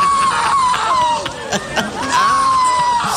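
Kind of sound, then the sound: human body sound, person screaming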